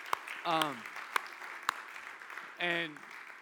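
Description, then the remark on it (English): Audience applause at a church gathering, honoring a pastor and another leader, as a steady wash of clapping, with a few sharp louder claps and two short vocal cheers rising above it. “You can clap for them.”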